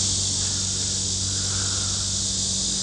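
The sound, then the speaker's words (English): Steady, dense outdoor chorus of crickets or cicadas in humid weather in Mount Lebanon, a continuous high-pitched buzzing drone with no breaks, fairly loud and evenly sustained, with a low hum underneath. “And now, yeah, back in Mount Lebanon, listening to the crickets or cicadas, or please tell me what I'm listening to.”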